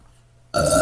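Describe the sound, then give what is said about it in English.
A short, loud burp erupts suddenly after a moment of near silence, rough-textured, lasting about a third of a second. “Excuse me, I got a burp.”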